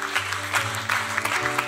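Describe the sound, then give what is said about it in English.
An audience claps together in a dense, steady round of applause lasting under two seconds, with a low sustained musical tone humming underneath. “Give yourself a round of applause because you are special.”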